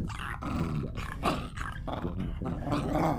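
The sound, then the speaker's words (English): A dog growls steadily at the corner of a living room, a low rumbling snarl sustained throughout with brief pulses and breaths, loud and without any talking. “A couple of minutes later, the normally very placid dog came in and started growling at the corner of the room.”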